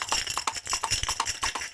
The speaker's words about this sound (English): Still has Bessie, his horse. Whoa, Bessie, whoa, girl, whoa.